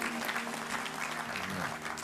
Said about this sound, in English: Let's give our young people another round of applause. They did a wonderful, wonderful job.